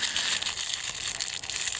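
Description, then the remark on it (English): Continuous crinkling and rustling of the paper packaging of a Storm Shadow toy set being crumpled and pulled at, with dense crackles and occasional sharper rips, no voices. “Come on, paper. It's just paper. Just freaking rip it, dude.”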